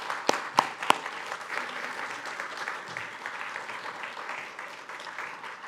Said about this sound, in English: And so can I get you to just clap for these two as they come up?